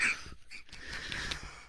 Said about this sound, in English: All right. I'm coughing. Excuse me.